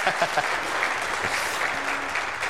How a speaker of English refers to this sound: We can clap one more time for that.